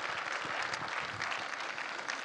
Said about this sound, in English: All right, clap your hands for that guy back there with the glasses.